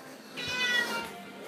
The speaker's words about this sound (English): Oh, God, this cat. You want to be on the podcast, I see. Well, you can't.